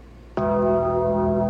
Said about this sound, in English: Bells for Rainn Wilson.